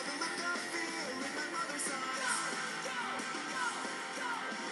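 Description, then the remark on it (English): A loud, dense punk rock track with distorted guitars and drums, where a singer lets out a high, shrieked yell of "go" over the full band. “I love that go, that shrieking go.”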